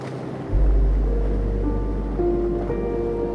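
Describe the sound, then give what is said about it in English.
A steady, rushing wash of ocean waves begins after a brief pause and continues loud and unbroken, with soft sustained tones humming faintly beneath the surf. “Floating in the loving embrace of the sleepy ocean.”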